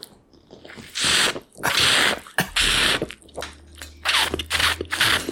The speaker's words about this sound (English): Ew, I don't like the mate sound at all. Mm-mm. No, man, that's just That was really loud.